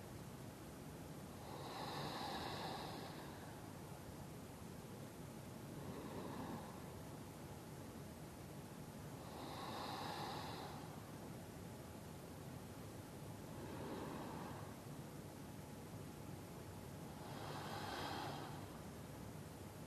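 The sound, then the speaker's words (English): Slow, deep breaths drawn in and let out at an unhurried pace during a breathing practice, about five in all, alternating stronger and softer, heard fairly quietly over a steady background hiss with no talking. “And now we're breathing into and out of the heart.”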